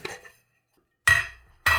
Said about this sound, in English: Okay, now let's open the tin and get to the bottle inside.